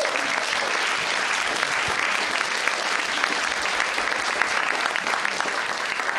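Sustained audience applause fills the whole stretch, a dense steady patter of many hands clapping at an even, fairly loud level with no voices standing out.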